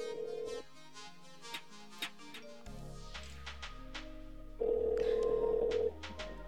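A phone call being placed: a steady electronic ring tone sounds briefly at the start and again later for over a second, over a backing beat with deep bass and sharp percussive hits.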